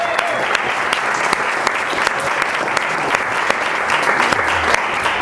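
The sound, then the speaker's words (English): An audience claps steadily throughout, a dense, continuous wash of many hands with scattered sharper claps standing out, sustained at an even, fairly loud level with no speech. “And so first, I just think she deserves a round of applause for that.”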